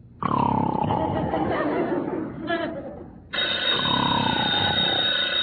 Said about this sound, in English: The telephone. Answer it.